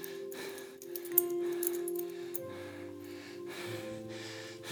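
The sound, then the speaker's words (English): Keys jingle in a few bright, shimmering bursts of metallic clinks, played over a steady, low sustained tone. No one speaks. “As I began to think about this message, I just began to jingle these keys.”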